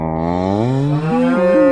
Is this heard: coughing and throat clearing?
no